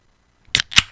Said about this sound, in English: I'm going to open this beer now and drink it with my mouth because I didn't drink it after mowing the lawn.